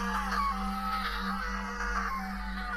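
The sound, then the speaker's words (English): A girl wails and screams in long, drawn-out, rising and falling cries that continue without pause, over a steady low electrical hum. “Avery wailed, and this time the noise poured from her in a great deluge”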